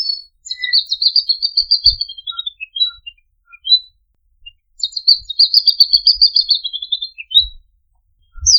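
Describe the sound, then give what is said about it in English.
A male magpie robin, a bird found across India, sings clear, warbling whistled phrases from a high perch in the breeding season to woo females, in two long bursts separated by a brief pause, fairly loud, with a few soft low thumps beneath. “During its breeding season, usually in summers, the male sings from a high perch to woo its females.”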